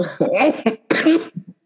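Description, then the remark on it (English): Two loud coughs in quick succession, the second harsher and breathier, trailing off into a couple of soft throat sounds. “I've got to cough real quick.”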